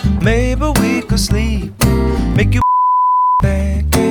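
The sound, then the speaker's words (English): A song plays with vocals until it cuts out for a single steady, high-pitched censor beep lasting under a second, then the music resumes right after. “Okay, and that's the beep test.”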